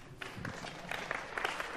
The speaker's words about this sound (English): Round of applause for technology.